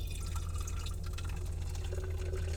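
A drink pours steadily into a cup for a couple of seconds, a continuous splashing and trickling with a low rumble underneath and no voices.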